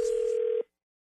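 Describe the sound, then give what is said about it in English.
A steady telephone dial tone hums for just over half a second, fairly loud, at the start of a prank phone call, then cuts off abruptly into silence. No separate dialing beeps stand out. “We'll see if he passes in your brand new phone tap right now.”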